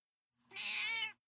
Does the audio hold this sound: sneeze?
no